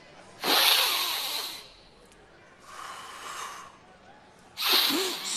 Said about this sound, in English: Let me show you a breathing exercise that I learned deep in the Himalayas.